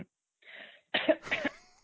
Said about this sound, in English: Excuse me, that's my smoker's cough.